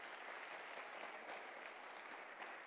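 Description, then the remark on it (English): A church audience claps steadily, the dense patter of many hands blending into a continuous wash of applause that holds at an even level for a few seconds with no voices standing out. “Just clap your hands and, you know, we're here.”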